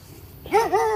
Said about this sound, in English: How'd you guys get an earthling dog on this planet? We adopt them from time to time.